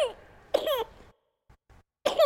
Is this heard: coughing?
yes